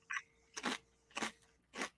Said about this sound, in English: like them chips. So crunchy. They're so good. Oh, my mic is on. I'm sorry. My bad.